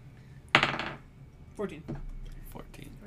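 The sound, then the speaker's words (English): Dice clatter onto a hard tabletop with a sharp first impact, then a few lighter, scattered clicks and taps as they tumble and settle. “My dice are better.”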